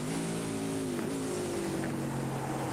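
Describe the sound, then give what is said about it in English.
Racing car engines drone loudly and steadily, their buzzing pitch bending and shifting as cars battle through traffic along the circuit at Adenau, with some wind noise and no voices. “Battling through traffic here, and this could be danger time for any of them.”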